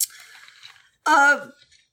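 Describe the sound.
A wet slurp of a sip of Canada Dry ginger ale, about a second long, then a brief pause and a short, satisfied voiced 'ahh'.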